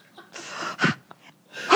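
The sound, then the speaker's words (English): Heavy, breathy exhalations and gasps come in a few loud bursts, one long airy huff followed by shorter rasping breaths, with no talking. “Breathing heavy.”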